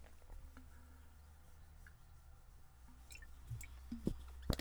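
drinking water

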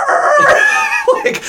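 rooster crowing

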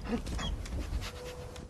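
dog panting

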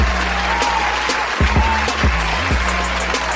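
applause

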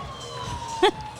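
emergency vehicle sirens

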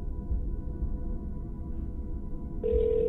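telephone ringing

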